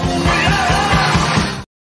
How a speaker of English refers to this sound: Like, I know that yell, that, oh, yeah. Like, it's just one of those weird things that I don't know.